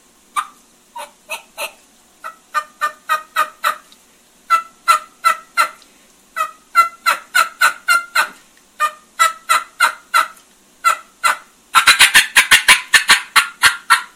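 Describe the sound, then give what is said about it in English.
A wild turkey hen's fly-down cackle: loud, irregular clucking notes with shifting pitch that speed up into a rapid, dense burst near the end, with no talking. “It's really interesting because a lot of hens will kind of work right into a fly-down cackle.”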